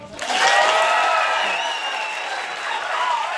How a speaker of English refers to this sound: Okay, that was maybe because I asked them to applaud for a sound check with our engineer